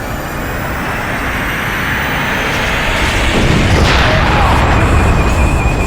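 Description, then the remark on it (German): A loud explosion in the fuel rod chamber of a nuclear power plant: a dense, roaring rumble that swells partway through and keeps rumbling heavily to the end, with no voices. “Eine Explosion in der Brennstabskammer.”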